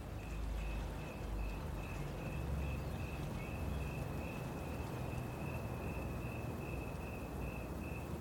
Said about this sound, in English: Crickets have now begun to chirp a bit louder as the day gets darker.